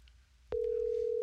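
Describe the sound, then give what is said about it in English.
After a moment of quiet room noise, a steady electronic telephone tone switches on abruptly and holds at an even, fairly loud level until the end, with no one talking, as a phone call is placed to Congressman Johnson. “Let me just call Congressman Johnson and get him on the phone.”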